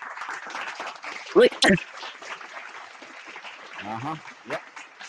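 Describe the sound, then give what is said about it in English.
Scattered clapping from a small handful of people, with two sharp, louder claps standing out early on amid a thin patter, while voices murmur underneath. “Nah, that still just sound like a few people in the room.”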